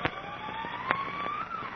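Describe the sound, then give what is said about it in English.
A far-off state penitentiary siren, sounding after an escape, wails over a lonely mountain area with a slowly rising, sustained tone, faint and steady under scattered crackling pops and background noise, with no voices. “Far in the distance, they can hear the siren of the state penitentiary from which they've just escaped that evening.”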